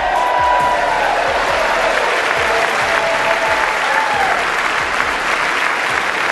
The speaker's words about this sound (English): And all that applause is taking place in the House of Representatives because after the 15th ballot, Kevin McCarthy was elected Speaker of the House.